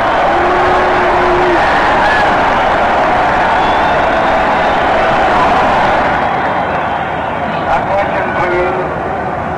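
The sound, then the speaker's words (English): A large baseball crowd cheers for the New York Yankees as they trot out onto the field, in a loud, steady roar that holds for the whole stretch, easing off only slightly toward the end, with a brief sustained tone rising above it. “Just listen to the cheers for the Yankees for a moment.”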